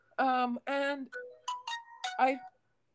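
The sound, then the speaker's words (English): A phone notification chime plays: a short melodic run of about half a dozen bright tones stepping through different pitches, lasting a couple of seconds before silence. “Notifications.”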